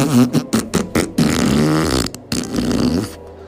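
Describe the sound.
A wet, buzzing raspberry blown with the mouth against a girl's belly, imitating a fart: a few short sputtering bursts followed by one long, loud, vibrating blast that trails off, with no talking.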